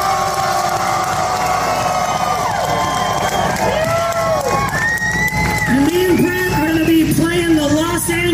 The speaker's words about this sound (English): Round of applause for Mr. ….